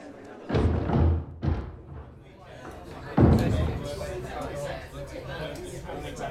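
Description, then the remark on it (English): A door, held by Maurice, shuts with a heavy thud, followed by a couple more solid knocks and bumps, while an evening crowd murmurs steadily in the background. “Oh, thank you for the door, Maurice.”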